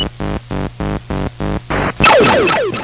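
Sound effects from the arcade video game Asteroids: a steady run of seven loud, evenly spaced electronic thumps, then a burst of chirping, sweeping synthetic tones that fade out. No one speaks.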